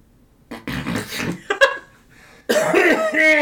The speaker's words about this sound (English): And he just like goes on this coughing fit for a few minutes.